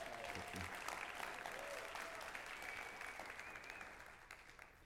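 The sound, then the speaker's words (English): A round of applause from a crowd at Heart of the Father, steady dense clapping that holds for about five seconds before thinning slightly at the end, with a few faint voices mixed in. “Let's give Brandon a round of applause.”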